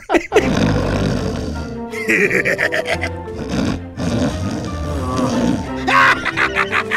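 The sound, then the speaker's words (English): Loud, raspy snoring in long drawn-out breaths, each exhale breaking into a gleeful, sinister cackle. A voice performs the snores and laughter of a character sleeping on a couch, in a slow repeating rhythm. “And one of the gags is him sleeping on their couch and he's snoring and cackling evilly when he exhales.”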